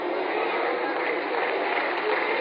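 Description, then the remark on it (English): Steady, dense applause from an audience, many hands clapping together into a continuous wash of noise that stays even in loudness throughout, with no voices standing out. “So wait a minute, stop clapping.”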